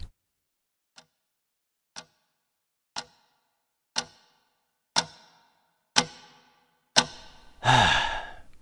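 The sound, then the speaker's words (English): Fifty clocks tick in steady unison, one sharp tick per second, growing steadily louder over about seven beats before a loud breathy rush swells up at the end. No one speaks. “50 clocks in one.”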